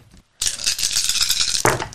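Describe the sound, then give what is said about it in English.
Dice clatter loudly and continuously for over a second, a dense rattling of several hard pieces shaken together, ending in a sharp final clack. “Get all them dice, girl.”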